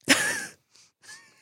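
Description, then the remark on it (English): A voice imitates a sniffle: a loud, slightly voiced nasal snort, then two shorter, quieter sniffs after brief pauses. “Did you sniffle?”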